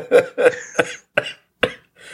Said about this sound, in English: All right, let's see if I can do this without coughing.